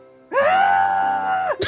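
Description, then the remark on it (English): A person imitates a goat with one long, high, nasal bleat held for over a second with a slight waver, then a short breathy burst right after. “No, it said goat noises, so I obliged.”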